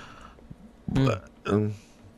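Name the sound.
burp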